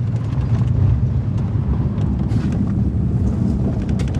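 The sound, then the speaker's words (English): A car drives along a rough, very muddy dirt road with small ponds of water, having turned off the highway toward La Tuna in the mountains of the Golden Triangle region; its engine and tires make a steady loud rumble with scattered bumps and splashes, heard from inside the vehicle. “We've been in the car for about 2 hours, and we turn off the highway onto this dirt road.”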